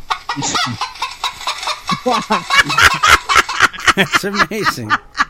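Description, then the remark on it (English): A person imitates a bird call, letting out a loud, rapid run of throaty, hen-like clucks and squawks for several seconds with no other talking. “You imitate a bird too”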